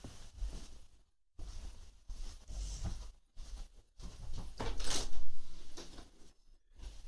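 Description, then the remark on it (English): A front door opens and closes with a series of clunks, rattles and scraping handling noises over several seconds, broken by brief silences, moderately loud, with no talking. “It's the front door.”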